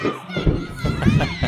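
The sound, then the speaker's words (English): Several children giggle, shout, squeal and chatter over one another in a lively, continuous jumble of high-pitched voices as they run around a room with beds at night, one jumping up and down, with a few thumps of play underneath. “They are giggling, laughing, and playing. They're running around the room.”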